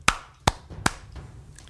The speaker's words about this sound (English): This hatch only becomes visible if you clap 3 times. So, you clap. Give me your 3 claps.